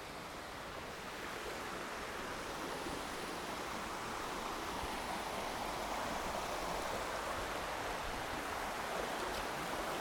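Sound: river stream flowing water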